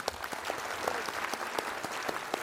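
An audience at the end of a Science Festival talk claps steadily for the presenter, a dense, even patter of many hands with no voices standing out, sustained for the whole moment.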